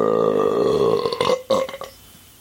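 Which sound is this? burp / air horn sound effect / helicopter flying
burp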